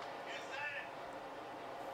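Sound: subway train running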